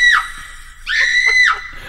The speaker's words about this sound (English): Yeah, that's how he screams, guys.